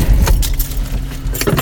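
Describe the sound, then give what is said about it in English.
Keys jangle and clink in a few quick bursts of bright metallic rattling while someone searches for a car key or card, with a steady low rumble underneath, like an idling car. “Let's find your key here.”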